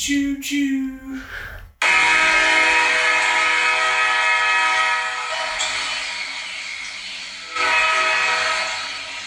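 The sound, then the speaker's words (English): A short tonal toot, a brief pause, then a loud, sustained train whistle blares over the steady roar of a nearby rolling train, swelling again near the end. “Choo-choo. The Lane train has landed in Oxford.”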